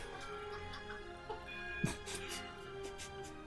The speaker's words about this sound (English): Do I hear a grandfather clock? Yeah, why is there a grandfather clock going off in the background?